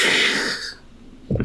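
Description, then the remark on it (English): A single harsh, breathy cough bursts out fairly loud, tapering away, followed by a brief, lower throaty sound a moment later. “You got a cough there.”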